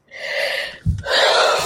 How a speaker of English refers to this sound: It's like maybe we shouldn't be yawning on air. No, I'm kidding. It's a joke. Sorry, my bad. You can yawn. It's all good.